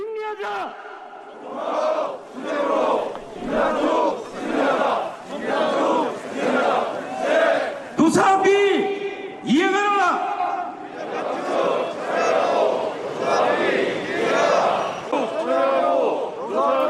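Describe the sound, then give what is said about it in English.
A large crowd of unionized Seoul Metro workers protesting against a restructuring plan that includes layoffs chants in loud, rhythmic unison, voices rising and falling in repeated bursts, with a brief sharp bang and shouts partway through before the steady chanting resumes. “Unionized workers of Seoul Metro launched a protest earlier on this Wednesday, calling for the subway operator to withdraw a restructuring plan that includes layoffs and instead hire more workers.”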